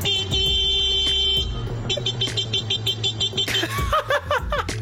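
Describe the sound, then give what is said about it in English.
A man vocally imitates a car horn, producing loud, sustained honking tones in short repeated bursts, followed by a stretch of chuckling and laughter-like sounds. “He isn't being interrupted by the car. He is making the car sound.”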